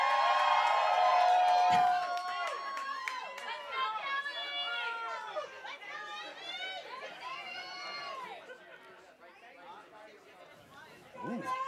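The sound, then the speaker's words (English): An audience cheers and shouts, many overlapping high-pitched voices whooping at once, loudest in the first couple of seconds and then continuing as a busy, excited crowd roar. “Let's get some cheers from the audience.”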